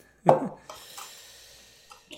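A spoon strikes a tea tin once with a loud, sharp thud that quickly fades, followed by faint rustling and a couple of soft knocks.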